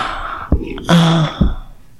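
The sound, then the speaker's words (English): ASMR wet lip-smacking mouth sounds: two sharp smacks about a second apart, with a brief low voiced hum between them, all fairly loud against an otherwise quiet background. “The ASMR lip smacking.”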